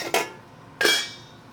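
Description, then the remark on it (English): Two sharp metallic clanks of a cooking pot being handled, each with a bright ringing tail that fades quickly, spaced about two-thirds of a second apart with no voices. “finally, we got a pot.”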